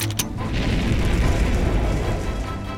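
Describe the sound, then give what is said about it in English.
A brief high crackle gives way to a loud, steady roaring rush with heavy low rumble, sustained like a jetpack firing and thrusting upward, with no voices. It is a jetpack on a suit, fired by pressing a small red button, lifting two figures into the air towards a spaceship. “Mia pressed a small red button on her suit. Time to use my jetpack.”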